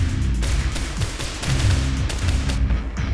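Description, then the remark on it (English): Rapid, sustained gunfire fired into a memory storage database room: a dense stream of sharp cracking shots overlapping one another, loud and steady for the whole few seconds over a heavy low rumble, with no voices. “Shots have been fired into the memory storage database, Mr.”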